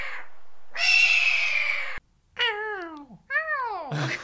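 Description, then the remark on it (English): A human voice imitates a hawk's cry, coming out more like a cat's meow: one long, harsh screech, then two loud, downward-sliding wails with short gaps between. “I just make cat noises every time I try to make a hawk noise.”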